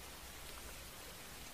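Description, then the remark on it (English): Steady rain falls in a continuous, even hiss with no breaks, a soft wash of drops heard alone with no voices, fairly quiet and evenly spread. “Look, can I get a ride or am I gonna walk home in the rain?”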